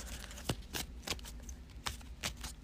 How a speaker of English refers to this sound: This is going to be a messy turn for me, because I only got 2 cards left in my deck. So there's 2, and then I'm going to shuffle.